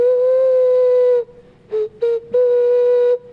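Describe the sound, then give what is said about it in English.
A steady, breathy whistle-like tone with rich overtones from a flutonian, a flute once called a whistle: a long held note, then two short blips and another sustained note, played alone without any talking. “used to call them whistles. But I have changed the name to flutes.”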